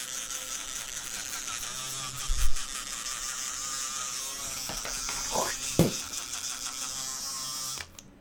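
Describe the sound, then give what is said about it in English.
An electric toothbrush hums with a steady, high-pitched buzz for nearly eight seconds while teeth are brushed, the tone wavering with a few brief knocks and scrubbing shifts before it cuts off. “With that being said, let's start brushing our teeth, gentlemen.”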